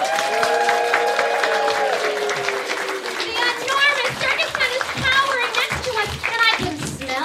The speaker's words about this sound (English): Wow, we're back in P.T. Barnum's circus among the crowd waiting for the show to start. Can you hear the cheers and applause coming from inside the big tent?